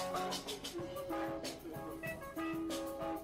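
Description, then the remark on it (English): Steady New York City subway train rumble fills the space, with sustained tonal notes rising and falling over the constant mechanical noise and a faint murmur of voices. “Which people can find on NYC Subway Sound.”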